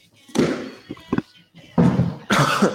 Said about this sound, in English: Sorry, guys. I got a little bit of a cough.